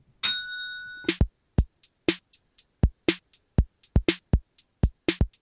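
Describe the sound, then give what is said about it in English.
A single bright bell chime rings out and sustains for about a second, then a fast, steady run of sharp percussive hits follows. No one speaks. “With that, I'm going to ring the bell.”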